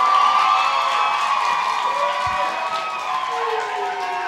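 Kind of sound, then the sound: crowd, audience clapping and cheering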